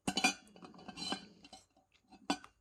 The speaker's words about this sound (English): Sorry, if you hear that rattling, that's my water, and I do use a reusable stainless steel straw, so that's what you hear.